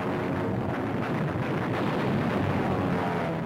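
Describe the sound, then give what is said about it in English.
A dense, unbroken roar of massed anti-aircraft gunfire from the cruisers and destroyers of a naval task force, firing at attacking Japanese planes, with bursting shells. The rapid blasts blur into one loud, rumbling wall of noise that holds steady throughout, with no voices. “The sky is spotted with bursting shells from massed anti-aircraft guns as they knock down the attacking plane.”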